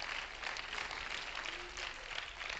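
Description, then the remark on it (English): A church audience claps their hands to praise the Lord in a steady, dense wash of applause, many hands overlapping with no distinct beat, holding at an even level throughout with no one speaking. “Somebody ought to clap their hands and praise the Lord for that.”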